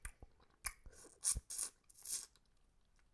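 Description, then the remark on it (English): Loud, crisp crunching of goldfish crackers being chewed into a microphone, with several bright, noisy bursts in an uneven rhythm and softer mouth sounds between them, no talking. “Like, was this bitch stop crunching her goldfish into the microphone?”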